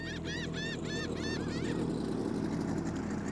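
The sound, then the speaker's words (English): The motorboat engine of Catalina Harbor director Doug Bombard's boat, out searching for the missing Natalie at 7:44 a.m. on November 29th, 1981, drones steadily in a constant low rumble, while a bird gives about five quick repeated calls over it in the first couple of seconds. “At 7:44 a.m. on November 29th, 1981, Doug's boat found something.”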